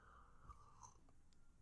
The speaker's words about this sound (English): So as I take a sip from my mug for coffee.